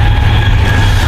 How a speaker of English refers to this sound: If the sound of the train's disturbing, I'm sorry about that, but it's a free podcast, you know? It's free atmospheric character.